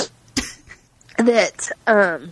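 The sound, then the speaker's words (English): A single short, sharp sneeze bursts out, followed by a couple of drawn-out voiced sounds from the same person. “Hold on, I'm gonna sneeze.”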